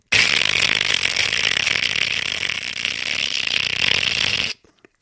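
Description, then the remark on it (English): A voice imitates a ringing alarm clock on a mantelpiece above a fireplace, with a loud, harsh, continuous buzzing rattle that holds steady for about four seconds, then cuts off abruptly into silence. “And I woke up because the clock was doing this.”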